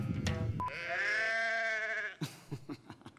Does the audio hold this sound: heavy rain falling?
no